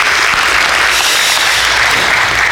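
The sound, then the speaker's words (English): An audience claps steadily for a person after a prayer, a dense wash of many hands at an even, loud level for a couple of seconds with no voices over it. “Everybody clap for her.”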